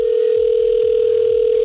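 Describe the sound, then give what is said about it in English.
A steady, continuous telephone dial tone hums at a constant pitch, loud, with faint low thumps underneath and no voices, as Virgin Radio hosts place a call to a contest entrant. “So let's make the call.”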